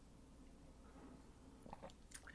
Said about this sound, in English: Gonna drink a little water.